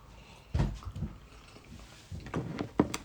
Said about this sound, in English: All right, so here, first sip of God's Gift by Player One Coffee.